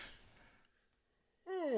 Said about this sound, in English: excuse me. I yawned. Well, you want me to send you a blanket here and kind of tuck yourself in?